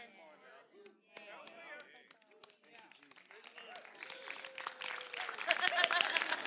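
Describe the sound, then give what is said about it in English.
A golf clap in a church: sparse, light hand claps that start scattered and gradually grow denser and louder toward the end, with voices murmuring underneath. “Golf clap.”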